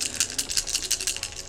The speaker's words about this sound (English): Oh, well, let me grab another dice. Don't pretend like you're not excited about that. Oh, no, I'm not pretending. I am very excited about rolling dice.